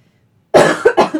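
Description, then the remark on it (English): A loud cough bursts out after a moment of quiet, followed quickly by two or three shorter coughing hacks in a rough burst. “Coughed on you.”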